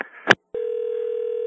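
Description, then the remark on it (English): A sharp click on a phone line, a brief silence, then a steady, unbroken low-pitched electronic tone hums on to the end, like the line dropping to a disconnect tone. “Oh, hello. I was disconnected.”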